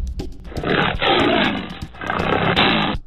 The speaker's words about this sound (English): A lion's roar can be heard from as far as 5 miles away.